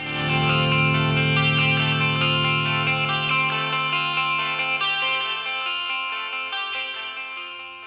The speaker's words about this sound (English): For the outro, George arpeggiated the F add 9, spelling out for us what notes are included in the chord. Once again, we hear the notes F, A, C, and G chiming out from the 12-string Rickenbacker.